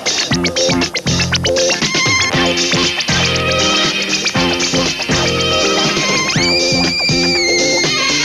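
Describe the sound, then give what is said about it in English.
A loud, busy 1970s sci-fi sitcom opening theme song plays throughout, with punchy rhythmic hits and layered melody, and a bright sustained synth-like tone swelling in near the end. No one speaks. “We then segue out of the cold open with the latest in a list of future ringtones that the boss might annoy me with the show's opening theme song.”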